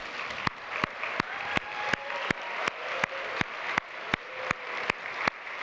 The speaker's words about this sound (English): So if you're a dad, would you stand up? And we just want to cheer for you real quick. So dads, let me get you to stand up.